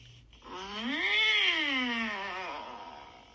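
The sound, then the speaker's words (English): A human voice imitates a dissatisfied cat meow: a drawn-out, whiny call that rises and then slowly falls in pitch, a single sustained complaining call lasting about two seconds, clear with no other talk. “Okay, then we have the dissatisfied meow.”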